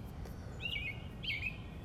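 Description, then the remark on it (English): Two short, bright bird chirps ring out about half a second apart over a low, steady outdoor hum on a Monday morning at 7:44 a.m. on Long Island, New York, outside the city, clear against the quiet background. “As you can hear, birds are chirping.”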